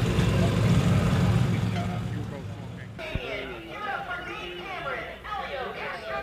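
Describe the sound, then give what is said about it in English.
A Team Hardpoint Porsche race car roars past in a live open paddock, its loud engine drone fading away over a couple of seconds, followed by people chatting in a busy outdoor crowd. “There goes the Team Hardpoint Porsche”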